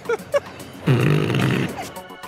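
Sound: toy fart sound effect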